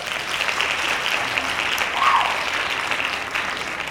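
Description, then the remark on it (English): Steady applause from a group, a dense, continuous patter of many hands clapping at even loudness throughout, with no voices standing out. “You get a hand claps.”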